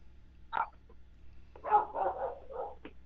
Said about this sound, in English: Sounds like you got company there. Hopefully it's not the feds. Hopefully your dogs aren't barking at the FBI. No, they just like to bark.